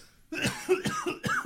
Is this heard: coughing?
yes